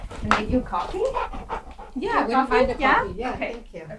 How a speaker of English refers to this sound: He doesn't even bark when she arrives at my door, but he's happily wagging and wiggling.